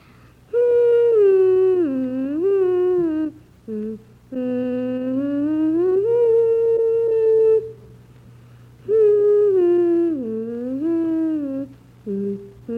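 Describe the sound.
A six-year-old boy hums the beginning of The Swan by Saint-Saëns, a slow, gliding melody in three long phrases, the pitch swooping up and down smoothly with brief pauses for breath, over a faint low hum.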